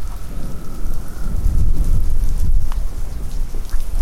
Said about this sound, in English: Beautiful night at Isle Royal. Incredible, I love storm energy so much.